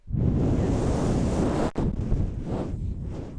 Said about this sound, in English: we're going to get you to blow out the candle. You ready?